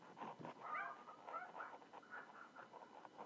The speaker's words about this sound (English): Are they yappity-yippity dogs? Well, you hear them. They're right outside my window here. Good fucking God. All I do is hold the mic out to the window. Are they the Chihuahuas or something? One of them is, but he's the quiet one, surprisingly.